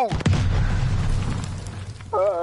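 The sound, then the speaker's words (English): A video game grenade explosion: a sharp burst followed by a heavy, low rumbling boom that sustains for about two seconds, with a brief tonal game sound effect at the end. “I've been blown up.”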